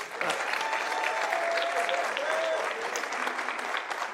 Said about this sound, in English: y'all don't need to clap for it.